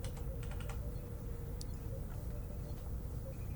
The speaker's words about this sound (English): Because we're all typing at the same time. That's why.